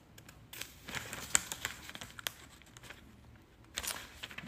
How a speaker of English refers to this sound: She's trying to separate the pages. Or as Virgil and Daryl, our new best friends, would say, turning pages.